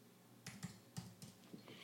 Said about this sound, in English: I'm going to type in a zip code.